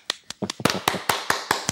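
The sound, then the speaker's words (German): A short burst of applause: roughly nine crisp hand claps in a quick, fairly even rhythm, moderately loud, with no voices over them. “Applaus.”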